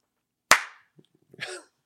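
A single loud, sharp hand clap cracks out and rings off briefly, followed by a few faint taps and a short, soft voice-like sound a second later.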